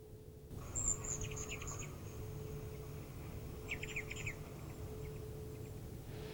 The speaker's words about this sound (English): But one of my favorite pieces in this app is the ability to listen to the way these birds sound, and they actually have different calls for each one of the birds. So let's try and listen.